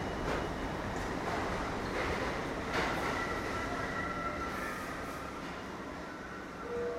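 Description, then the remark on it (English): A Train 2 subway train bound for Van Cortlandt Park, 242nd Street rumbles loudly and steadily into a station, wheels grinding on the rails, with thin metallic squeals rising as it slows near the end. No one speaks. “Train 2, Van Cortlandt Park, 242nd Street, approaching the station. Please stand away from the platform edge.”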